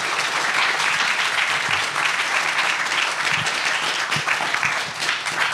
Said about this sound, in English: So give him a big round of applause for joining us.